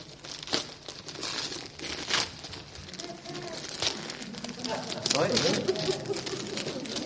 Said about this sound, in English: I thought maybe you were ripping the paper off.